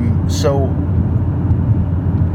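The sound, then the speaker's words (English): Steady low rumble of a car driving to Metro, engine and road noise droning continuously and fairly loud throughout, with a brief high-pitched chirp near the start. “The car does sound better.”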